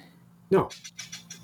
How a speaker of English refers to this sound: Sorry, my cat is attacking something.